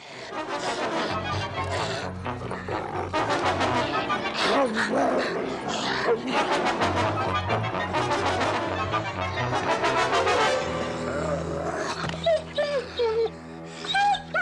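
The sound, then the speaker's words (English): A dog snarls and barks furiously through a loud, chaotic scuffle, with agitated human voices mixed in throughout and a few high yelps near the end. The dog growls at a man, who has the ball; The man flings the dog around as it tries to bite him, then throws it. “he gets mad and starts growling at … because … has the ball”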